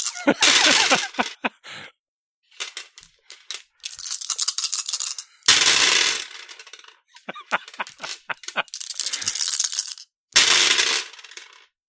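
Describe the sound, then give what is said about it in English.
Twenty-one fudge dice rattle and tumble as a send-off salute in repeated loud, bright clattering bursts, about five waves of dense clicking separated by short pauses, with no voices. “I think the only appropriate send-off is the 21 fudge dice salute.”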